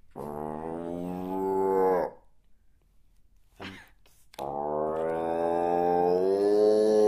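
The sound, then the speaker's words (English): A voice imitates a cow's moo in two long, low, droning calls separated by a short pause. Each rich, steady tone holds for a couple of seconds, the second one lasting longer. “if I started speaking like a cow, you know? Give me an example of what that might sound like, please.”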